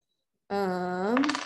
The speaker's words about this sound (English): All right, I get to roll a D8 and add in my constitution modifier.